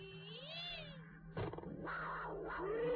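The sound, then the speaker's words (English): A person imitates a panther's roar: a drawn-out yowling tone, a sudden harsh burst, then a rough, rising growl, loud and with no other talking. “That's a wonderful cat roaring sound. Big cat roar. Yeah, I love my panther noises.”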